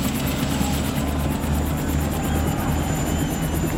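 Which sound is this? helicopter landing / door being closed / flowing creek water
helicopter landing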